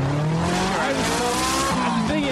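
Car tires squeal and skid over a steady engine roar as the car pulls over, a continuous screech with a shifting pitch that lasts a couple of seconds.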